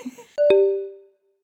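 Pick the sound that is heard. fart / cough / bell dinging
bell dinging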